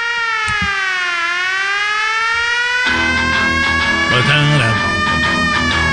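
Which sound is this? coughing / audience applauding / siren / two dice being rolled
siren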